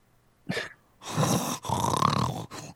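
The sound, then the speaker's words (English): A person imitates a French bulldog's snorting, wheezy breathing: a short snort, then three or four long, rasping, congested breaths in quick succession, fairly loud with no speech. “They all sound like 500-year-old men trying to run a marathon when they're at a dog park.”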